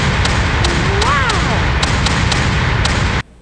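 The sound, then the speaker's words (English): A malfunctioning cannon sound effect, the cannon having broken, sputters with a loud hissing rush, irregular thudding knocks and a brief warbling whistle that dips in pitch, then cuts off abruptly. “The cannon broke.”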